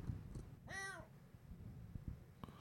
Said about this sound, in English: Okay, if you hear the cat, that's because there's one 2 feet from me. She's come out to play and say, you know, pay attention to me.